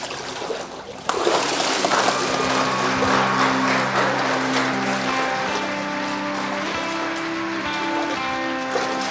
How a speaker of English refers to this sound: All right. I can hear the clapping. You may not be able to over there, but it's happening. And so, people, we are so glad to hear the excitement.